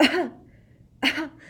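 Two short, raspy coughs about a second apart, moderately loud, with a quiet pause between them and no talking, from a girl acting very sick.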